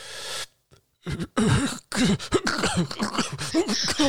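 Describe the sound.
A voice imitates a man's harsh coughing fit after a puff on a vape, starting with a few sharp bursts after a brief pause, then breaking into a continuous run of hacking, throaty coughs, loud.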